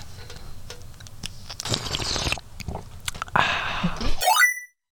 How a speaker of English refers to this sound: Next up, we have the slurp of a thousand words.